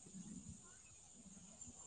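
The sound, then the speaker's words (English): A steady, faint high-pitched trill of crickets runs continuously through the quiet, with a soft low rumble underneath and no distinct voices. “We hear crickets.”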